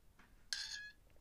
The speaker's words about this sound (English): That was my glass straw against my glass.